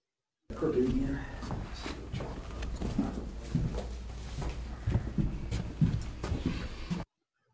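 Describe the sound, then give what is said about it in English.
A muffled, hissy EVP recording played back, with irregular footsteps thudding and scuffing over several seconds and indistinct, whispery voices murmuring beneath a constant low hum. “You gotta really listen in between the footsteps and stuff, and you'll hear it.”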